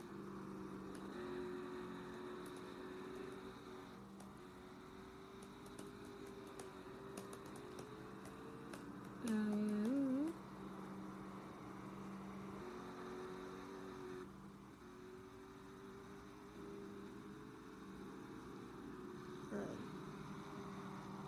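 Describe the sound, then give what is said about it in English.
A video game stock car engine, the number 42 McDonald's car, hums at a steady, moderate pitch, then revs up briefly and louder near the middle before settling back into a constant drone, with no one speaking. “Gonna be Matt Kenseth in number 42. Oh, it's the McDonald's car.”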